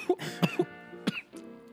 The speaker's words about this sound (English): Let me get this cough out. Hold up.